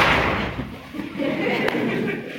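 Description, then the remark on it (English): A crowd stamps their feet together to the line 'if you're happy and you know it, stamp your feet', in a dense, steady patter of low thuds, with a rushing wash of noise from many people over the top. “If you're happy and you know, and you really want to show, if you're happy and you know, stamp your feet.”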